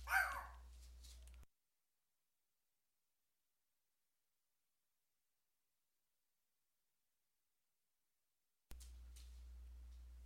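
A dog barks in a short burst right at the start, somewhat muffled and not very loud, followed by a long stretch of silence and then faint background hiss.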